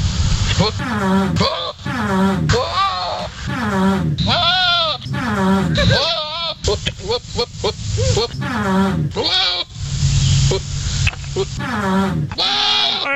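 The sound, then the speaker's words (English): Goats bleat while mating, over and over in loud, wavering, nasal cries packed closely with barely a pause, with rough low blurts from farts by Steelers wide receiver Antonio Brown mixed in beneath several of the calls. “These are the noises that goats make while mating. And I think goats in general just make this noise.”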